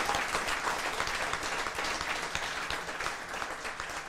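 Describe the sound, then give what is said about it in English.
A crowd at the Mayor's Award 2018 ceremony applauds everyone nominated, many hands clapping in a dense, continuous patter at an even, moderate loudness throughout, with no voices. “Give them a nice big round of applause, please.”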